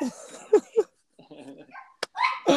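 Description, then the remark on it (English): A dog barks in several sharp bursts as a door is opened to someone there, with a couple of whiny yips between them and a brief click partway through, while muffled voices murmur in the background. “Dog's freaking out too. As soon as I open the door and somebody's there.”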